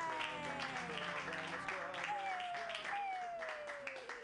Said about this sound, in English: Clap wildly for Ginny Hogan! Yay!